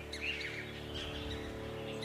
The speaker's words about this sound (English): You take 2 points of damage from these birds, and they're just flying all around you, pecking at you.